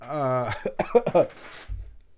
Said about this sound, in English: Mustard makes me cough. Even talking about it makes me cough.